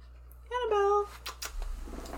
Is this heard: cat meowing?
yes